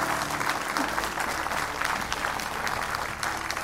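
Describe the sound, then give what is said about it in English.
People clap steadily as a clap offering, a dense wash of applause that holds at an even level from start to finish, with no voices standing out. “Give these people a great big clap offering.”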